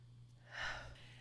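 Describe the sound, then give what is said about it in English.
A single short, wet-sounding sniff through the nose, fairly quiet, from someone sniffling while crying, over a faint steady low hum with no talking. “Well, do you hear me sniffing? I'm crying.”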